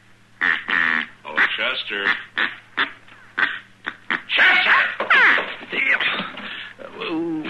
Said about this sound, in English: Oh, this is a duck call. I ordered all the way from St. Louis. It just come in the mail. Doesn't sound like any duck I ever heard.